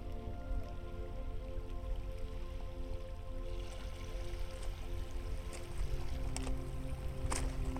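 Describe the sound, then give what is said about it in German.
Water laps gently and steadily against a shore where boats offer guided tours, with soft splashes and small drips over a continuous low wash. The sound is moderately quiet, and no one speaks. “Die Boote laden zu geführten Touren ein und das Wasser schwappt sanft gegen das Ufer.”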